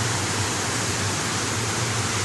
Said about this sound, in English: It's not the biggest in all the single metrics, but in all of them taken together, this is the greatest waterfall. And it just goes on and on and on and on.